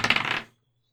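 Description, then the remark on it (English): A d20 die, rolled for a search check, clatters across a tabletop in a quick burst of rattling, bright clicks lasting about half a second before it settles into silence. “Give me a D20 check.”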